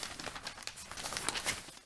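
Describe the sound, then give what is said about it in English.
Crisp rustling and crinkling of newspaper pages as the paper is handed over, a quick flurry of soft brushes and crackles, continuous for a couple of seconds, with no voices. “Let me see that paper.”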